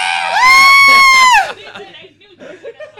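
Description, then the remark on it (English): A player voices a loud, high-pitched sustained scream imitating the piercing scream of a moving stone statue monster during a game, lasting about a second, followed by scattered laughter and chatter from a small group. “You hear a piercing scream coming out of it.”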